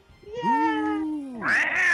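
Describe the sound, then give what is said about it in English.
A cat lets out a long, wavering meow that rises and falls, then breaks into a louder, harsher yowl, with no voices. “Oh man, she really got hit by that cat. Meow.”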